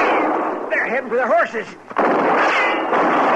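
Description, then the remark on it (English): Loud gunshots crack out in a dense, rumbling volley at two men heading for their horses, pause briefly for a wavering, voice-like cry, then resume in a second harsh burst of gunfire; one man is hit. “I'll see about the man I shot.”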